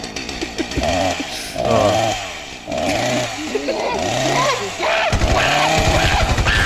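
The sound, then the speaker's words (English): A chainsaw runs loud, its buzzing engine revving up and dropping back several times in uneven surges, with a harsh, rattling drone throughout. “They met up with those monkeys that have the chainsaw in England.”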